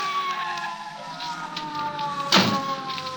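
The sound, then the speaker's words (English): A police car screeches to a stop, a sustained high squealing whine with a siren-like tone, capped by a short, sharp burst of noise near the end. No one speaks. “I was shaking the buzz out of my ears and scrambling to my feet when the police car screeched up to a stop.”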